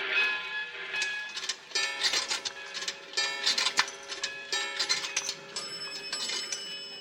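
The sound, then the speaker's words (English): A train bound for Chicago pulls away from a station, with rhythmic clacking, bursts of hiss and a steady high whine of moving rail cars, with no voices. “My train's pulling out.”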